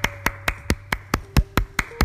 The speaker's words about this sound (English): Your girl... after that long grant I did on Facebook Friday, your girl finally got some sponsorships for podcasts. So, yes, let me clap.